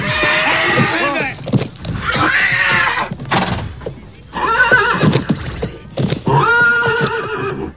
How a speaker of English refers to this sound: I think that's his dependable horse.